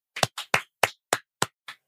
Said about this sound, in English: Clap, please.